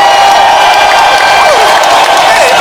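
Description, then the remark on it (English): A crowd claps and cheers at steady volume, a dense wash of applause with whoops and shouts rising above it for a few seconds. “Let's clap for that.”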